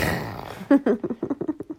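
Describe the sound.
A child voices a grumpy, growling roar, imitating the sound a mother makes when grumpy, starting with a loud rasp and trailing into a string of short, rhythmic guttural bursts, without other talk.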